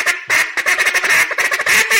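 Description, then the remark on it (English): A duck call blown in a quick run of raspy, drawn-out drag notes, made by dropping the jaw, loud, with brief breaks between bursts and no talking over it. “All you're going to do is drag a note, which means you drop your jaw.”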